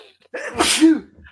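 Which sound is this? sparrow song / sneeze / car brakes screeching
sneeze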